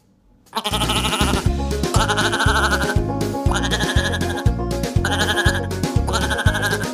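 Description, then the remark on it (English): Goat bleats repeat in a loud, steady loop over a thumping rhythmic beat, almost like a song built from the wavering cries, with no talking. “Authentic goat noise for your creative needs.”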